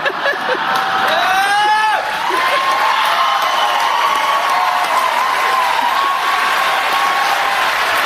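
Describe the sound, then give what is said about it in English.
Steady, loud audience applause at an awards event, with Serena Williams among those clapping and laughing. Cheering and a few rising whoops come at the start, and the dense clapping continues evenly for several seconds with crowd voices underneath. “Serena's clapping and laughing.”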